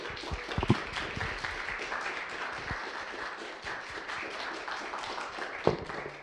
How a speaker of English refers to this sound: All right, you guys don't need to clap. It's okay.